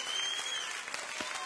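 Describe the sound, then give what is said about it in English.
Steady audience applause, a dense crackle of many hands clapping at an even level throughout, with no voices standing out. “Come on, clap your hands.”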